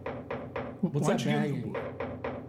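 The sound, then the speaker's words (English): Steady, forceful banging on a door, a series of heavy thuds about three per second, briefly interrupted by a loud voice before the pounding resumes. “Of course somebody's banging on the door.”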